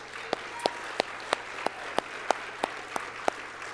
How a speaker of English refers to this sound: I believe that we should celebrate wins, and so I would just like us to take time to celebrate together. If we could just give the Lord a round of applause.